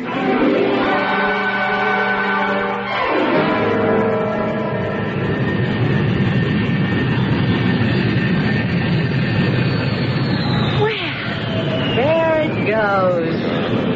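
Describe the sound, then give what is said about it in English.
An airplane's engines roar loudly and steadily as it takes off, the droning pitch shifting and sweeping near the end as it pulls away. “I had to see that plane in the sky before I'd leave.”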